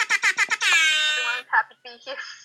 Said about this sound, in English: I did get air horns. Yay.